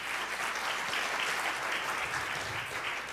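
Steady audience applause fills the space, a dense wash of many hands clapping at once, sustained and fairly loud throughout without any talking over it.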